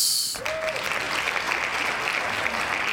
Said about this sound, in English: Hand claps.